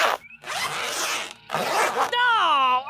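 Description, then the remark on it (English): Several people zip up their clothing zippers in quick succession, loud rasping strokes with brief gaps between them, followed by a voice starting to speak. “Everyone zip up and shut up.”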